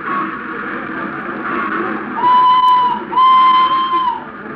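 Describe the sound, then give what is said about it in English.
A train whistle sounds twice, two loud, steady blasts with a short gap between them, rising over a low rumble of station noise. “better not to get on the train? No. We wait for the whistle.”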